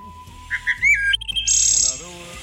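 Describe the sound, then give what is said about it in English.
A person imitates a wood thrush song with their throat, producing a short run of clear, fluty whistled notes that rise and then end in a bright, buzzy trill, fairly loud. “for doing that bird song through your throat”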